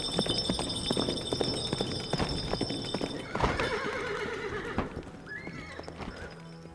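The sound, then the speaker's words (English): The green knight's horse gallops quickly away from the hall, its hooves clattering in a quick, rhythmic gallop on the floor, then the horse lets out a loud, drawn-out whinny and a shorter neigh as the hoofbeats carry on and fade slightly. “And turning wildly about and reeling the reins, the green knight flies so quickly from the hall, the hooves of his horse strike up bright sparks from the floor.”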